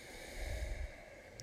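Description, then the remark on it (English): A single deep, airy inhale through the mouth during a breathwork exercise, a soft rushing breath that swells briefly and then fades into quiet hiss. “Breathing in healing energy.”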